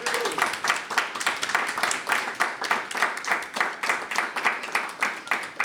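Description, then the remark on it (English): Steady applause from a small audience, with dense, fairly even hand claps continuing at moderate loudness throughout, with no voices over it. “So round of applause for them.”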